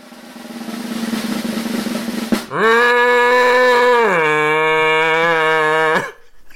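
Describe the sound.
A man's voice imitates a foghorn with one long, loud, low droning note held for about three and a half seconds, dipping slightly in pitch partway through, after a stretch of murmuring background noise.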